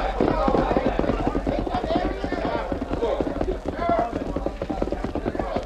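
horse hooves clip-clopping

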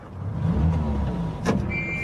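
car engine running

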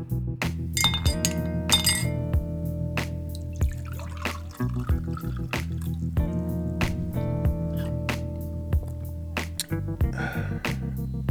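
glass clinking

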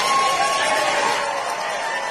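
crowd booing

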